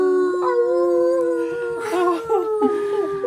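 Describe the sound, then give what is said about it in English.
A computer-generated howl holds steady for about three seconds, loud, its pitch wavering and sliding near the end. No one speaks over it. “Let's out a computer generated howl.”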